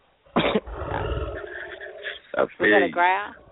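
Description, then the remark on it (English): A sharp burst opens into a low, rough growl lasting about a second and a half, loud, followed by a couple of short voiced vocal sounds. “That's a growl.”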